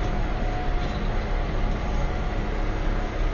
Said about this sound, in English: So, as a bonus to the bonus, I'm recording this as I drive a tractor around a hay field cutting hay